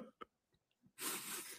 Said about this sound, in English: Oh, and I'm going to cough.